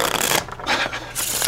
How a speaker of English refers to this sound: All right, I'm going to cut it back into the deck so it's fair. Shuffle the cards.